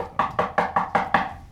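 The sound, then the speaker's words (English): A quick run of six knocks on wood, evenly spaced in a steady rhythm, each a sharp hollow rap of similar loudness, with no talking. “Sorry, knock on wood.”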